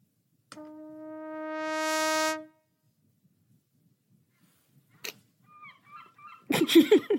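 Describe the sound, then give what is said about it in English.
A seagull gives a few loud, harsh cries near the end, following a long sustained horn-like note, a sharp click and some faint chirps. “I presume it's not the seagull.”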